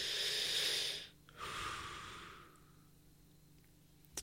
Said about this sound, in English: This is going to be a very ASMR part, and all you're going to hear is me talking and breathing, because if you listen to these podcasts enough, you know that I breathe very loudly.